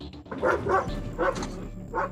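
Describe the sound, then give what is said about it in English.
A police dog from a city police or RCMP canine unit barks repeatedly during a search of a 40-acre property and surrounding fields, in short, sharp bursts, about four loud woofs spaced unevenly over two seconds, with a low rumble underneath and no talking. “Canine units from both city police and the RCMP were deployed.”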